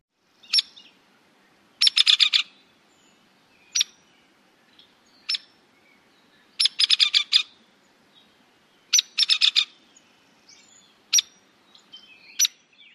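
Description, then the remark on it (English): A hairy woodpecker gives sharp, high single calls mixed with several quick, rapid-fire rattling bursts that do not descend in pitch at the end, clear against a quiet background, with no talking. “And hairy woodpecker.”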